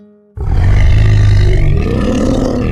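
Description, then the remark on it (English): A person imitates a grizzly bear's roar with one loud, deep, raspy growl that bursts in suddenly after a brief quiet moment and holds steady for over two seconds. “Bear roars and he rumbles.”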